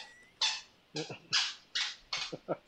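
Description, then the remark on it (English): A dog barks about six times in quick succession, sharp, high-pitched yaps coming at a steady rhythm, clear with no talking over them. “Can you tell your dog to shut the fuck up?”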